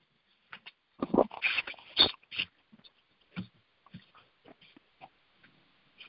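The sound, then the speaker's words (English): A dog barks at the door and huffs in a quick cluster of loud, rough bursts near the start, then trails off into scattered softer snorts and yips with no talking. “My dog is barking at the door here.”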